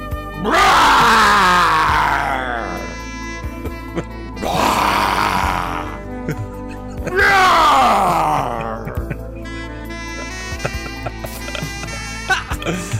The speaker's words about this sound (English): Animal growls. Demonic screams. Animal growls and demonic screams, yeah?